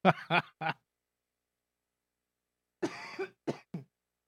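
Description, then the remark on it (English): Three sharp coughs in quick succession, a pause of silence, then a longer raspy cough followed by two more short bursts. “I got a cough.”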